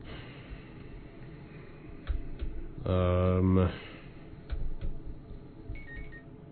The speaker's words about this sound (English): That's it. That's the buzzer. That's it. Yep, that's it. And we're done.